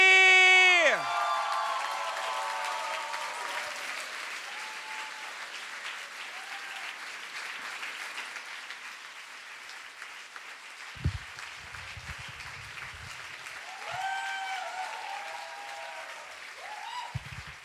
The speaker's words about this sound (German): Bitte einen herzlichen Applaus für die großartige Puneh Ansari!